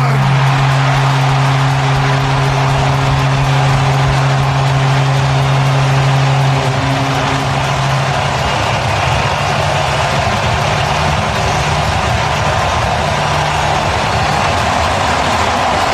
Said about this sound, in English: Just, oh, the roar of the crowd, Smithy. I love that. Mm. That was Toronto's Rogers Centre. That was the Toronto Blue Jays. Teoscar Hernandez smashing a home run there.